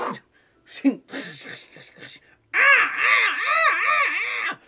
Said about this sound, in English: A whole murder of crows coalesces towards that thing, and as the figure is chasing you to the edge of the gate, he is definitely distracted by the crows all converging on a single point.